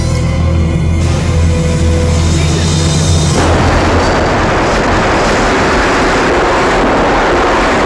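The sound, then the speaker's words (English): A mid-air plane collision sound effect, a prop plane carrying Robert De Niro and Charles Grodin hitting a 707: a steady droning aircraft engine hum cuts abruptly into a loud, sustained roaring crash of harsh noise that continues to the end, with no voices. “What the Charles Grodin plane just hit our plane.”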